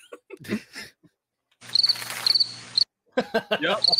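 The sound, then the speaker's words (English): A brief burst of cricket chirping, rapid high trilling pulses in quick groups lasting about a second, inserted between stretches of people talking. “I said, hey, how's it going? How's your flight back? Crickets.”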